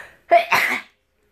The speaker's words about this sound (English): Oh gosh, I gotta sneeze.